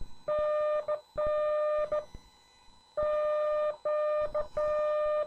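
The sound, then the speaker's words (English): A steady, buzzy Morse code tone, sent on a bug key, keys out a CQ call in two groups, its dashes dragged long and its dots clipped short, giving uneven, sloppy timing. No voices. “So it would be more like this as a sloppy CQ.”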